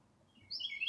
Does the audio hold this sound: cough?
no